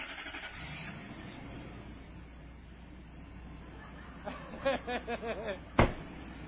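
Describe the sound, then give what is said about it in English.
A car in a played video drives past on the right side of the road with a steady, moderately loud engine rumble and road noise, followed near the end by a few short voice-like bursts and a sharp knock. “I wish they'd just show the car. Oh, maybe. There we go. Yeah, they drive on the right side there.”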